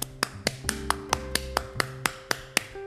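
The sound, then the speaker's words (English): A steady run of about a dozen sharp hand claps, evenly spaced and fairly quick, with a soft sustained musical tone humming underneath and no talking. “The hairy godmother clapped and clapped.”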